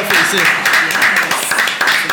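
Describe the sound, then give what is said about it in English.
Steady, loud applause from an audience on the All the Fly Kids Show, a dense wash of many hands clapping that holds at an even level throughout the short stretch. “Clap it up for yourself.”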